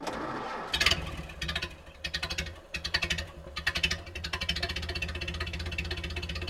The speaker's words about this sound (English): To start engine, turn key.